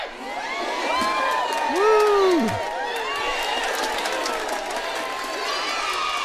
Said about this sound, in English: Woo! Wow, big cheers. Yes, we have a live studio audience, guys. Our first episode, and we'll have it for the next 2 minutes.